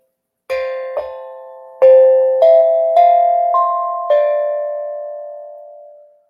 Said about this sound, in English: I also have this tongue drum.